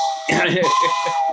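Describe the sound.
A passing train sounds a steady, high, buzzing horn-like tone that holds throughout, while people talk over it.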